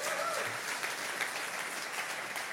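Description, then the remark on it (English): An audience applauds steadily, a dense wash of clapping hands holding an even level for a few seconds with no talking over it. “You got to be, like, married 50 years to get those types of applause.”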